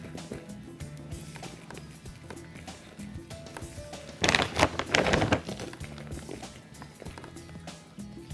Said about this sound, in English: Now I'm going to put the cactus in there. And now I'm going to trickle compost down the sides there.